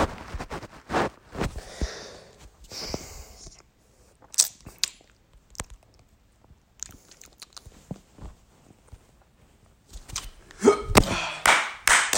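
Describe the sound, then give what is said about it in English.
A person hiccups repeatedly, sharp abrupt gulps coming at irregular intervals, with quieter breathing and small rustling noises in between and a cluster of hiccups near the end. “I got the hiccups going, bro.”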